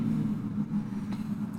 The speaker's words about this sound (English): Pause for noisy-ass car. Every car around here is so fucking noisy. It's because they're a big-ass fucking truck. No, there's people who just don't have, like, mufflers on their cars because they're like, it's cool. So cool being loud.